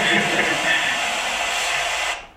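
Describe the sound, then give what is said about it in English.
A vacuum cleaner roars with a steady, continuous whooshing drone for about two seconds as someone hoovers a kilt to clean it, including the Velcro, before an Antarctic expedition; then its noise quickly fades away at the end. “It's not many Antarctic expeditions you're going to see someone hoovering a kilt, is it?”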